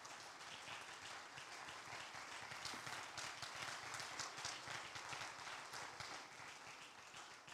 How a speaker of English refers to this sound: Stand to your feet. Clap your hands and thank God for his word.